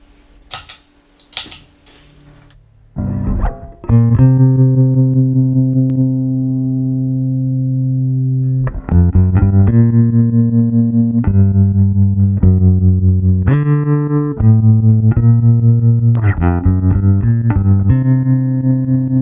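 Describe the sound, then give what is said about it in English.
After a few sharp clicks, a bass guitar plays sustained low notes and short phrases, its volume pulsing in a steady, rapid tremolo throughout. No one speaks. “Can you do some, set it up with a tremolo and do some playing, because I was hearing some crackling when you were just a knob, just a very slight amount.”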